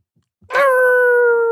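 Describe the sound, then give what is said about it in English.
A small, chihuahua-like dog named Rocky lets out a single sustained, high-pitched howling whine, loud, holding a steady pitch for about a second with no talking over it. “No, that's a very chihuahua sounding.”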